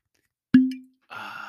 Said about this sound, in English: That sweet sound of a cork pop.